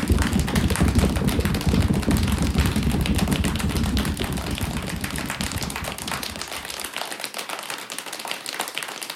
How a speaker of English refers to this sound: Storm. Thunder. Heavy rain.